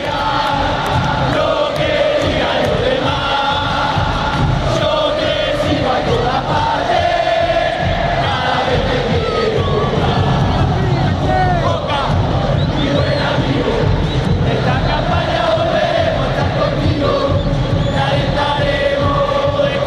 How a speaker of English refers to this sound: I could hardly focus on the game itself, so frenetic and captivating was the sound, the rhythm and the passion of the crowd. Boca won the game 3-0, which I suspect only added to the fervour. An altogether incredible atmosphere and experience.